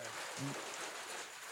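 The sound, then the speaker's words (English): Steady rain patters on a surface in a continuous, even hiss that fills the whole moment, moderately loud, with a brief low voice-like murmur near the start. “Oh, hello. That's Rain. Rain's here.”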